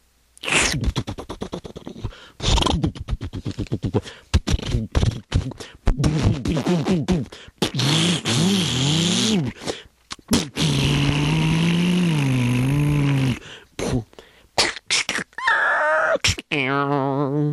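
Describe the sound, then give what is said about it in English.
A voice imitates a motorcycle engine as the speaker gets on a motorcycle, sputtering and revving in rising and falling bursts for several seconds, then whining upward as if pulling away, loud. “I get on my motorcycle.”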